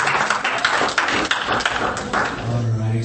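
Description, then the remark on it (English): A crowd applauds a woman just introduced at an event, clapping steadily for about three seconds, a dense, even patter of many hands with scattered sharper claps. A low hum creeps in toward the end. “Round of applause for Ms. Garcia.”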